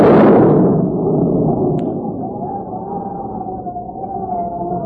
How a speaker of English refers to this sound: is that possibly be thunder? It Sure sounds like a storm coming up